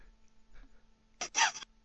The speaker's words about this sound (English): I'm just farting.